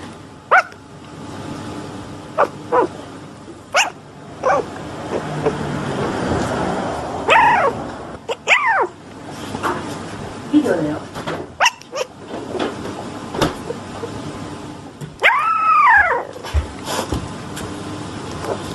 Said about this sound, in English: Okay, I had this kicking around. It's not like spectacular, but it's cute, and I don't know why I want to show it to you, but I'm going to show it to you anyways. It is a puppy dreaming.